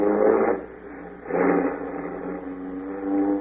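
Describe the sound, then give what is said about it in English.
A jeep engine revs up in two loud surges, then settles into a steady, droning run as it pulls away in Africa, with no voices over it. “Jump in this jeep. I can't get away from this place fast enough.”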